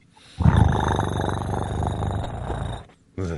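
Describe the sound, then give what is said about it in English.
A person imitates a cat's purr with a low, rattling, steadily pulsing rumble held for over two seconds, fairly loud, followed by a brief burst of voice. “Can you make a purring noise?”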